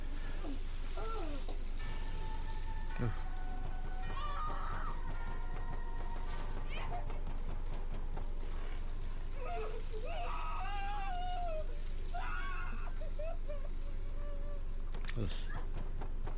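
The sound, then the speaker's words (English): A man screams in pain as his face melts off in a film scene, with high-pitched, wavering cries that come in several bursts over a steady background hum, fairly quiet overall. “His scream is kind of girly, but I'd be screaming like a girl too if my face was melting off.”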